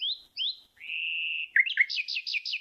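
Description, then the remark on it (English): A male nightingale sings a short phrase, the sound females like most of all its sounds: two rising chirps, a long steady whistle, then a quick run of repeated bright notes, clear with no talking. “And that's the sound that, among all the sounds that male nightingales make, this is the one the females like the most.”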